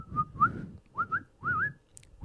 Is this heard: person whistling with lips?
yes